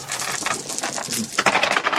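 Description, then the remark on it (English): A handful of dice clatter and tumble across a hard tabletop, a rapid burst of bright clicks and rattles lasting about two seconds, with no voices. “That was too many dice.”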